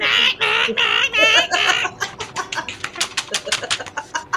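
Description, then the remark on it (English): A voice imitates a goose, letting out a run of loud, nasal honks before breaking into quick, rhythmic puffing bursts that mimic flapping wings. “Have you been practicing the goose flapping sound?”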